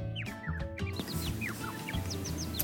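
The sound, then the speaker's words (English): A flock of birds flying overhead chirp and tweet at once, short rising and falling calls overlapping from several directions, a busy chorus over a low steady background rumble. “Then, Nüwa looked to the sky and saw birds flying in flock. As they flew, they sang a cheerful tune.”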